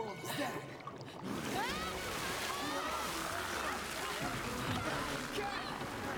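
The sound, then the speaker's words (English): Steady sloshing and splashing as someone wades across water, continuous for several seconds, with faint voices mixed in underneath. “Cross that water. It doesn't look too difficult.”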